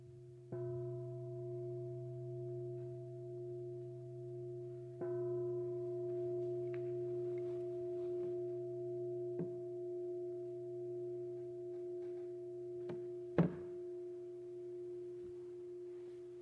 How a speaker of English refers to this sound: Supposed to ring the bell after we sit for a few minutes instead of before, but in the Zen tradition I'm doing it at both ends. I'll ring it again in a couple of minutes.